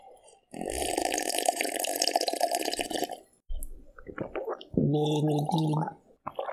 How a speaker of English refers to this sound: Hold on. Just let me take a sip in peace.